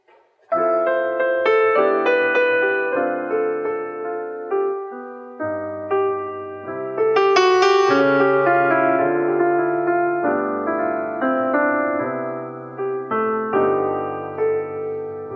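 A gentle, cheerful children's television theme plays on what sounds like piano, with bright melodic notes over steady low chords, loud, continuous for the whole stretch with no voices.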